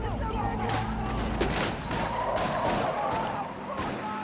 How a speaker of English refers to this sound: So it's an escape car for these guys that just ran out. Now they're shooting at the car. A bunch of guys came out and are shooting at the car. So the car gunfire, shooting gunfire back and forth.